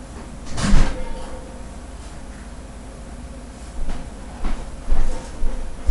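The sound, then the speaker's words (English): A house door is opened after the doorbell rings and later shut, with a sharp clunk near the start and a few softer knocks and rattles toward the end over a low steady hum. “Going and open up the door, and I didn't know who was out there, but whatever.”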